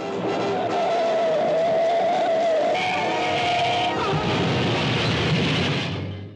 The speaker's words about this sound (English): Coming up, a devastating car accident results in the tragic death of a beautiful young woman. Not only that, but she's decapitated during the crash.